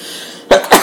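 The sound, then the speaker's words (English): A radio host's loud sneeze breaks out of a quiet background in two sharp, breathy bursts, one right after the other. “That would be a sneeze.”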